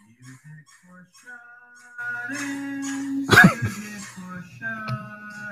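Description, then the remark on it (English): A dog gives a single sharp bark partway through, set among drawn-out howling, whining tones that rise and fall at moderate loudness. “Is there a dog barking?”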